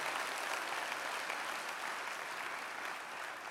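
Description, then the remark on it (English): A church audience applauds its volunteer worship musicians steadily, a dense wash of many hands clapping at once that holds an even, sustained level throughout without any voices standing out. “I think they need a round of applause for that heart that they display.”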